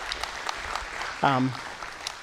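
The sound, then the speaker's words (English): A crowd claps steadily in a dense patter of overlapping hands, cheering a fundraising campaign that has raised $224,000, and a single whooping cheer rises briefly above it partway through. “Let's cheer for that.”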